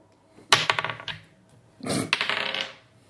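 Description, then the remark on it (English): Dice rattle and tumble across a hard table twice in quick succession in a dice-off, each roll a bright burst of clicking clatter that bounces and settles, with no voices. “You could either roll time honored dice off. Dice off.”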